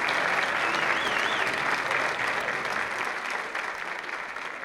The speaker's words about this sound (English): Ladies and gentlemen, let's all stand and give a nice round of applause.